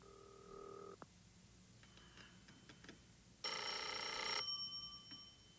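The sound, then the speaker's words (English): A telephone bell rings in short bursts: a brief ring at the start, faint clicks and tones in between, then a louder, longer ring near the end with a lingering tone. Nobody speaks, and the phone goes unanswered. “Brilliant use of this phone.”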